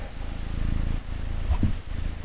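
A cat purrs steadily with a low, rumbling, pulsing hum that holds an even rhythm for a couple of seconds, with no voices over it.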